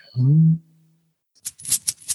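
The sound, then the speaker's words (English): A short low vocal sound comes first, then after a pause a bag of coins is shaken, giving several bright metallic jingles in quick irregular bursts. “and a magician was once here, left a few things behind, including this bag of coins.”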